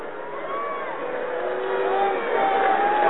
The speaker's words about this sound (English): That's actually a shot on goal. Budai makes a save. And the crowd doesn't like it.